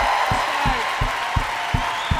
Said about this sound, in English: Let's get a round of applause for Governor Inslee, guys. Come on.